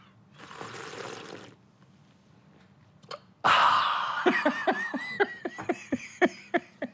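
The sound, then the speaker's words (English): A person imitates a parrotfish through the nose: a breathy hiss, a pause, then a loud snorting burst followed by a rapid string of squeaky, clicking chirps with warbling nasal tones. “That's what a parrotfish sounds like.”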